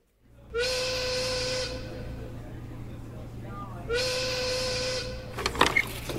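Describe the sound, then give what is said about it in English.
Two long, loud whistle blasts signaling that breakfast is over, each holding a steady shrill tone for about a second, separated by a short pause over a low background hum, followed by some brief clattering. “So many whistles in this place. What's that one for? Breakfast over.”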